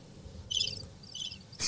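Two short bursts of high, buzzing cricket chirps, evenly spaced, over a low ambient rumble, followed by a brief sharper rustle at the end; no one speaks.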